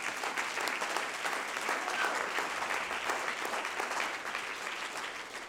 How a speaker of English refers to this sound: Clap your hands unto the Lord, all you people.